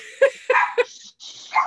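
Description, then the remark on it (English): A dog named Harry barks sharply three times in quick succession, then lets out one more bark after a short pause, over a steady background hiss. “Yeah, I think, oh, sorry, my dog.”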